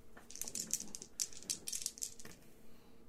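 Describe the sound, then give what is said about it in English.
Dice clatter across a hard tabletop in a quick, irregular run of bright, sharp clicks that bunch together, then trail off and settle. No one speaks. “As I search around the table for dice.”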